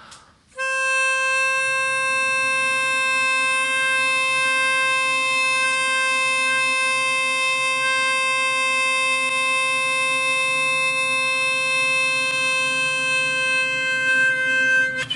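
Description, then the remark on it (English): A love tuner whistle is blown, sounding one steady, bright tone at 528 hertz, rich in overtones and held unbroken at the same pitch for about fourteen seconds, with a soft, low murmur of people humming together underneath. “It's called a love tuner, by the way.”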